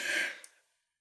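A short, breathy yawn-like exhale, airy, fading out within about half a second with no talking around it.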